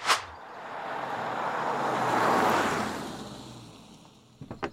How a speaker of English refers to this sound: Why, that sure was a perfect J-turn. Yeah, it's easy when you put a lot of weight in the back of the car.